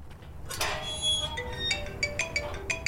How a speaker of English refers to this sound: The gate sound isn't from here, though. The Maryhill Cemetery does have a metal gate, but the sound it makes while opening and closing just didn't work very well for this moment. So I found and used a different gate recording instead.